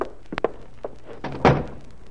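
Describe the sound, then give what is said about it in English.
A few light clicks and taps, then a door swings shut with a solid thunk, followed by quiet room tone. “Close that door”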